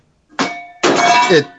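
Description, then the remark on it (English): A coffee cup gets knocked over on a table: a sharp thunk, then a longer rattling clatter with a faint ceramic ring, fairly loud, with no talking. “I drank too much of this coffee and knocked over the...”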